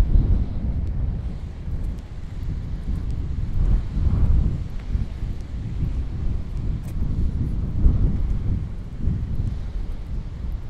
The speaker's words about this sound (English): Apparently it's too windy for a pedalo. It's always too windy for a pedalo. Even a light breeze, it's too much for a pedalo.